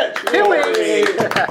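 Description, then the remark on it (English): Scattered hand clapping from a small group, sharp irregular claps mixed with a voice speaking or cheering over them, loud throughout the short burst. “Big round of applause”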